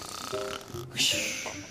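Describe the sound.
A voice imitates snoring: a low, rasping, voiced inhale followed by a breathy hissing exhale, one short snore cycle at moderate loudness.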